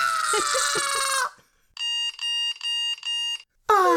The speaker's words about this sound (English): Beep, beep, beep. Beep.